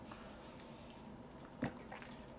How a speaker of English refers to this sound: excuse me, let me just take a sip of my water.